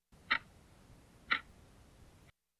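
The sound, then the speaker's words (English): Two crisp clock ticks about a second apart, sharp and bright, from a quiz game clock timing answers, over a faint steady background hiss with no voices. “Okay, that's the clock. That's the clock, so we do have the clock.”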